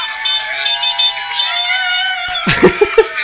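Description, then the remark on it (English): A moped horn, honked by Danny as he waits on the moped to be taken back to the pits, gives a quick burst of three short, bright beeps, following a steady high droning tone with crowd noise in the background. “Can you hear that? Yeah. He's honking the horn.”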